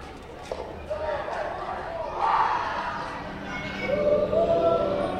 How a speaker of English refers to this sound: As people walk through the tunnel, they walk through the sounds of an entire park. Chimes. A Little League baseball game.